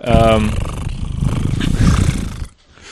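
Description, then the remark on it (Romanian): A person imitates a cat's purr with their voice, a low, rumbling, fluttering drone held for about two seconds, fairly loud, then stopping abruptly. “Toarce mai departe.”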